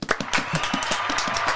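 A brief burst of group applause: many overlapping hand claps forming a dense, steady crackle that holds at a fairly even loudness for about a second and a half.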